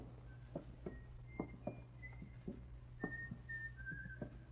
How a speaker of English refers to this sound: There's light coming under the door. He's in. Hear him whistling?